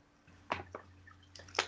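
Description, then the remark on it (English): Someone drinking water: a few quiet, wet gulping and sipping sounds in an uneven rhythm over a faint steady hum, with no talking. “I'm drinking water, fellas.”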